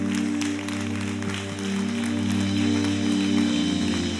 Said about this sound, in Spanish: Dale un aplauso al Señor bien fuerte.